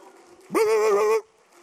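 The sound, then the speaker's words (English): A person in a church audience imitates a dog barking for Jesus with a single drawn-out, howling bark. It rises quickly, then holds a steady, fairly high, buzzy pitch for under a second before stopping, with faint murmur around it. “Let me hear the dogs bark for Jesus.”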